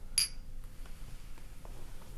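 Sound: shot glasses clinking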